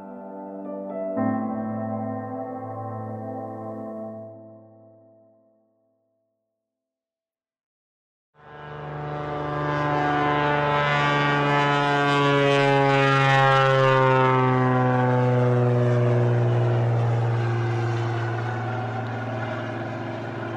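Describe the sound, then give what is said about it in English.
A seaplane's engine drones loudly with a steady, buzzing harmonic tone that sinks slowly in pitch and fades slightly toward the end as it flies away from a lake surrounded by spruce trees in remote Alaska, north of the Arctic Circle, in rain and fog, after a short tonal hum and a brief silence. “The seaplane that brought me here just flew away.”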